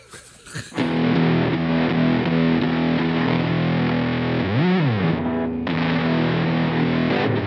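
A thick, buzzing electric guitar tone through a Kitty Caster FX Groovy Wizard fuzz pedal sustains loudly after a brief noisy start, with a swooping pitch bend in the middle and dense, saturated harmonics throughout.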